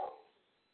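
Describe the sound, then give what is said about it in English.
A single short bark from a female pet dog, with a quick sharp onset that fades into a brief trailing decay and quiet background. “Yeah, she sounds like she's barking, but she's not really hard. It's just my dog.”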